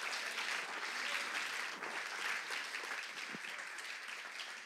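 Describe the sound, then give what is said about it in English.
A church audience claps their hands all over the room, a dense, steady wash of applause lasting the whole clip at an even, fairly loud level with no voices standing out. “Come on, clap your hands all over this room.”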